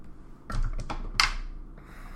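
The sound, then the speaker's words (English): A quick run of light clattering knocks as dice tumble down a dice tower, ending in one sharper click before a soft hiss. The sound is fairly quiet, with no talking. “Shout out to Dad's, Drew's from Three Die Block's dad for the dice tower that is ultra quiet.”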